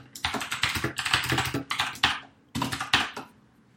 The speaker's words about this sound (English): Was that you typing? Yeah, I have a mechanical keyboard.